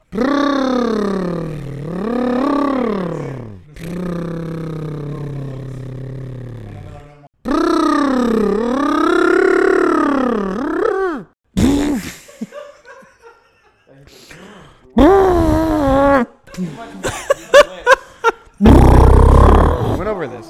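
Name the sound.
person imitating an elephant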